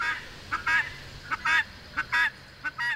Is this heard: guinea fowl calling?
yes